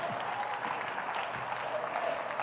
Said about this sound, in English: Quit applauding the performance. Performance isn't going to help you, but getting the truth and applying it will change your life.